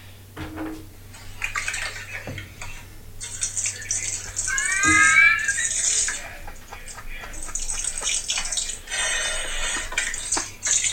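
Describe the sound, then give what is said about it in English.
Watery ketchup squirting from an unshaken squeeze bottle onto a hot dog on a plate in several hissing, sputtering bursts, with a short squeaky whistle partway through. The squirts are fairly loud and spread over the whole stretch. “The guy fucking squirted out like half the fucking bottle. It was mostly like water.”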